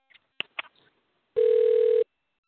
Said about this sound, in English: I don't know what's going on with this ringing of the phone. Is that somebody's phone actually ringing?